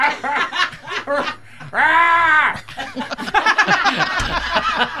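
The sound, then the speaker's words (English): Crackers, an angry pet talking parrot cooped up in a little cage, squawks: a loud, harsh, drawn-out screech of nearly a second that arches up and down in pitch, surrounded by rapid bursts of choppy, raspy calls. “Sounds like Crackers is teed off, too.”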